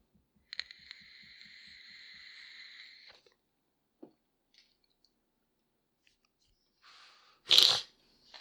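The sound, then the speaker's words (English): A thin, steady whistling draw on an e-cigarette lasting a few seconds, a couple of faint clicks, then a sudden loud breathy puff, with no talking. “Excuse me while I get a sip off my water here. And a drag off of my e-cig.”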